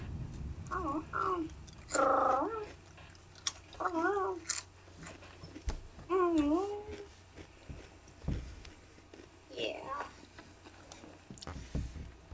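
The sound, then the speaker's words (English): A person's voice imitating a cat, giving several convincing meows in a row with rising and falling pitch, fairly loud, with short pauses between calls and a few soft clicks. “Is that, is that the cat or you? That's me.”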